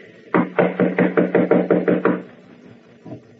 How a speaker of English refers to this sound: Ah, here is her suite. I will knock. She must be asleep. Knock again, please, will you?